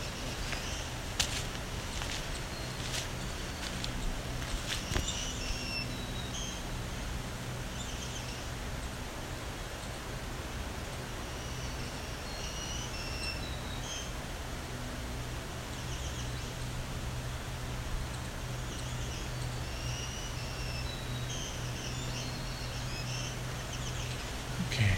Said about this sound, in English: You can pick out voices. That really sounds like the voice of a green warbler.